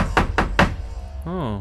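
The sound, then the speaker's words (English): Three heavy, powerful knocks on a door land in quick, evenly spaced succession, each a loud booming thud, followed after a short pause by a brief voiced sound from a person. “That was a very powerful knock.”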